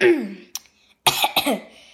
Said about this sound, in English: Okay, Wednesday then? Asked Rowan. Well, Jude coughed.